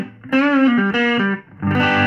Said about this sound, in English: Okay, so let's do a Les Paul. So, what we got here is my Gibson Baldwin Signature Les Paul. Most people don't like.